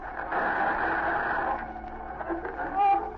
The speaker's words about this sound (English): Here's the interference again. Cut off the radio.